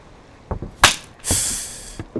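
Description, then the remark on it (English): A whip lashes a crewman: a sharp, loud crack, then a longer hissing swish and lighter smacks, with no voices. “But Greaves doesn't need an excuse to whip us, does he?”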